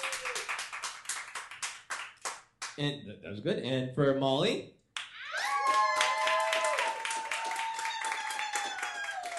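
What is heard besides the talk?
audience applause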